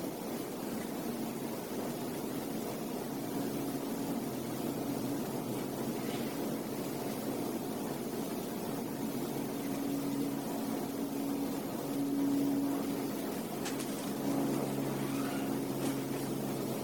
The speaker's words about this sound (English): Airplanes flying overhead. Not just the one we hear right now, but many, many thousands of airplanes of different sizes and shapes and helicopters.